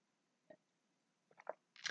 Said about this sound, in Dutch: Ik neem even een slokje water.